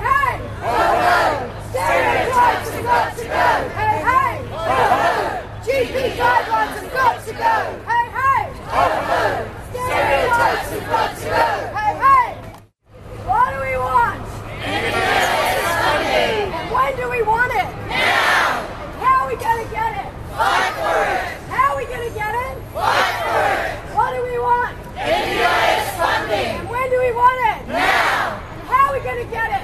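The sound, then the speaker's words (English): At the Millions Missing Melbourne Rally for ME/CFS, hosted by Emerge Australia, a crowd chants "Hey, hey! Ho, ho!" protest slogans in loud, rhythmic unison, voices rising and falling in repeated call-and-response bursts, with a brief silent break midway. “On this show, you'll hear experiences from people living with ME/CFS who attended the Millions Missing Melbourne Rally hosted by Emerge Australia, a not-for-profit organization dedicated to education, support, and community advocacy around ME/CFS.”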